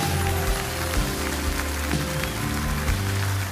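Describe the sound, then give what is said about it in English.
An audience gives the Lord a clap offering in a steady, dense wash of applause, with sustained organ-like chords underneath and no one talking. “Now give the Lord a great big clap offering.”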